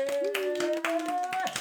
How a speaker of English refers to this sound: Yeah! Boom. Applause.